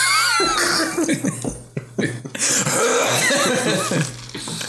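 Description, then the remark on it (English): A person fakes a string of loud, exaggerated coughs, harsh theatrical hacking bursts in quick succession with a throaty rasp between them. “It's going to try to interrupt you with the exaggerated coughs.”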